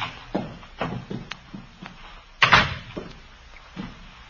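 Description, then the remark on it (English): A door is pushed open, with a series of soft, muffled bumps and a sharper, louder scrape-and-thud about halfway through, with no voices. “Door's open.”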